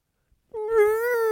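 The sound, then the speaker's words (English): A person imitates a cat's strangled meow: a single sustained, pinched, whiny vocal cry that starts abruptly after a brief silence and holds a wavering tone for under a second. “And I'm looking around and right at my feet, he's trying to meow, going, aah! And it's strangling. This high-pitched little.”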